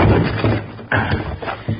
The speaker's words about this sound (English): Now put your shoulder to this door. Now.